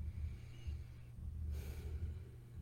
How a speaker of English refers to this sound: And we just continue to breathe, breathing into gratitude for this moment, for this time.